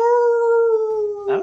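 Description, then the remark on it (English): A person imitates a husky's howl, holding one loud, steady, drawn-out wail for over a second before it breaks off into a short breathy burst. No other sounds accompany it. “That was not a bad Husky, you know.”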